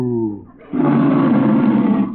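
A cow named Bossy moos as she is milked: a short tonal lowing opens, then a long, loud, rough bellow holds for over a second before trailing off. No talking accompanies it.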